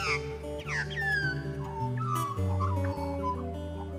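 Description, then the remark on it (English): Australian magpie (Gymnorhina tibicen) song: rich, flute-like warbling with pure sustained tones and quick gliding whistles layered over one another, continuous and fairly loud, with no voices. “Flute bird is nice because flute is the kind of pure sound that they can produce in their song.”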